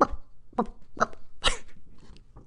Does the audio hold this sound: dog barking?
yes